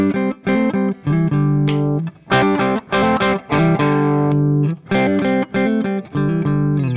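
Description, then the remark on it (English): Distorted electric guitar with P90 pickups plays loud, sustained chords in short bursts with brief gaps, the tone shifting between brighter and warmer as the pickup selection changes. No talking. “I'm hearing you switch and see the massive difference in tone from the different pickup selections.”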